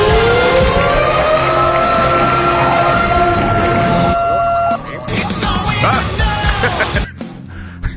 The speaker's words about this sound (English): I haven't done one of those in a while. I lost my tornado siren. Oh, no, there it is.